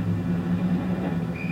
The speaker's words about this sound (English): The 5 o'clock traffic in the downtown area was heavy as usual.